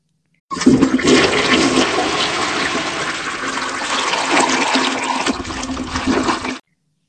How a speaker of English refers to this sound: I mean, I'm on the toilet right now, actually. Oh, I didn't hear anything before. Well, I'm about to flush.